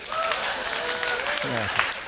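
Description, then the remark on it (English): An audience claps steadily for a couple of seconds, a dense wash of many hands at moderate volume, with a few voices calling out over it. “Waiting for applause.”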